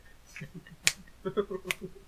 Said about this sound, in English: Snap your fingers.